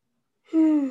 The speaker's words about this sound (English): Don't be yawning. This is not a place for yawns. It's a nappy time.